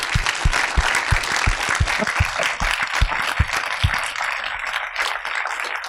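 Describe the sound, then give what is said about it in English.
A large audience in Melbourne applauds steadily to thank a guest, dense clapping at full volume, with a few sharper claps standing out before the sound thins slightly toward the end. “Please give Kirsten Johnson a big Melbourne thank you.”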